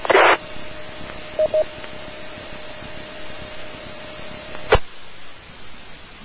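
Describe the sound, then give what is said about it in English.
A burst of noise, then a steady telephone tone with a couple of quick speed-dial DTMF beeps as a speed dial is pushed on the phone, ending in a sharp click over faint background static. No one speaks. “So, the speed dial was about to be pushed on the phone.”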